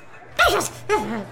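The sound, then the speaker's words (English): Two quick sneezes in a row, each a sharp breathy burst with a voiced, throaty edge, loud against a quiet background with no talking. “I sneeze. Must be something in the air.”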